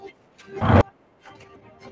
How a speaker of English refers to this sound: Totasaur is going to give a little towards Leon and then look towards the Spino and just charge. Roaring at the top of its lungs.